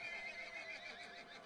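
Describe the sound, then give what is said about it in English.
A voice imitates an angry horse whinny, a loud, strained, wavering neigh sustained for about a second and a half with no other sounds around it. “You sound really, really angry horse. You nailed it.”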